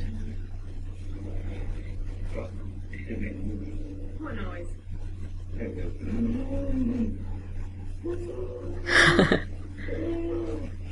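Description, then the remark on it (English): The TARDIS materialisation noise made with the brakes left on: repeated groaning, wheezing swells that rise and fall over a steady low hum, building to a loud grinding burst near the end. “It's not supposed to make that noise. You need the brakes on.”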